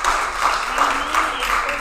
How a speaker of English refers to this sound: You got the Holy Spirit this morning. Go ahead and clap your hands and praise the Lord.